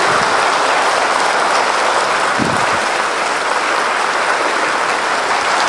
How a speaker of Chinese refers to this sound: 我们呢再次的以最热烈的掌声来感谢堪布大师给我们的开示，谢谢。